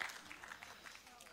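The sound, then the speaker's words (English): A church audience applauds the Lord, clapping together in a steady, dense patter of many hands, fairly soft overall and holding an even level for a brief stretch with no clear voices on top. “Let's applaud the Lord.”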